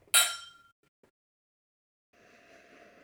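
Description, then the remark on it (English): New custom-made scotch glasses clink together once in a sharp, bright toast, the ringing tone fading quickly, followed by silence and then a soft, steady background hum. “Well, I'll tell you what, let's cheers.”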